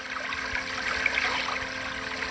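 Water trickles steadily and close by, a continuous bubbling, splashing patter with no pauses and no voices over it.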